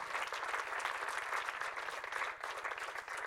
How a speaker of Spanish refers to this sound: ¿Aprendiste algo? Da un aplauso al Señor si recibiste algo. Amén.